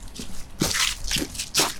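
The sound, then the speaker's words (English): Footsteps of people walking together crunch down a path of dry fallen leaves at an even walking pace, three or four rustling, crackly steps, with no voices. “We walk there together now, crunching down a path of fallen leaves.”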